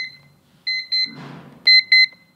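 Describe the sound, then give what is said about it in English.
A visual countdown timer, set to 45, sounds its alarm: loud, chirping electronic beeps in quick pairs, with a short rustling noise between the first and second pair. No one speaks. “And when it goes off, it's going to make this sound.”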